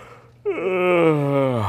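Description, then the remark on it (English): A voice imitates a huge bear's yawn: a loud, drawn-out groan that starts suddenly and slides from a middle pitch down to a deep, rumbling low tone, held for over a second. “And then the huge, great big bear gives an enormous.”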